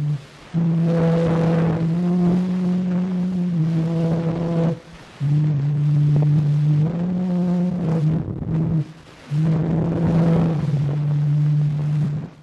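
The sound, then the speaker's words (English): An early, crackly recording of Clair de Lune from 1901: a thin, reedy melody of long held notes in slow phrases separated by brief gaps, buried in loud hiss and rumbling noise. “Sounds like a child playing a recorder into the wind. That is a recording of what famous composition?”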